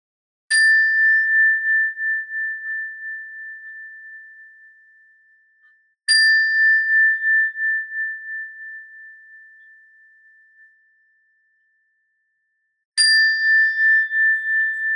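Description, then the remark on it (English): A bell is struck three times during a breathing exercise, with long gaps between strikes, each ring sustaining a clear tone that slowly fades toward silence before the next. No voices. “And when you hear the sound of the bell, try and listen to the bell until you can't hear it any longer or until it's no longer there.”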